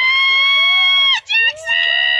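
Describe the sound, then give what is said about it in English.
Loud, shrill cheering and shouting, sustained, with high-pitched yells that rise and fall and break off briefly in the middle before surging again. “Well, someone's cheering loud.”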